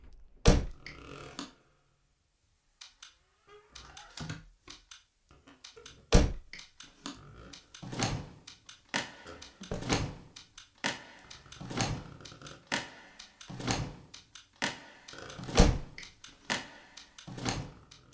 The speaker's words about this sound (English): I think you did a squeaky door or something. With it being an ex-care home, there were lots of door closers and all this kind of stuff